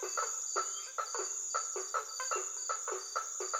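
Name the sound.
frogs calling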